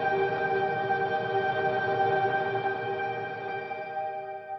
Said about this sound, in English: And then I put it through. I put it through just the Pro Tools plugin. So full reverb. So none of the original signal, just the reverb. And it's like a 9-second reverb. I think it's the church setting.